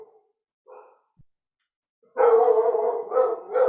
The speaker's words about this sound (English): dog is barking.